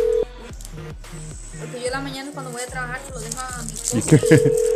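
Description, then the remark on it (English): A mobile phone vibrates in a steady series of short, low buzzing pulses, rattling against a surface while a person talks over it. “You can hear the phone vibrating on the stream now.”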